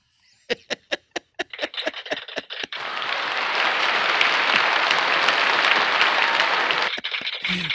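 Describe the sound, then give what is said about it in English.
A few sharp, separate claps quickly swell into a dense, steady wash of crowd applause, like a canned applause track, which holds loudly for several seconds and then cuts off abruptly. “I'm detecting that laughter and applause is artificial.”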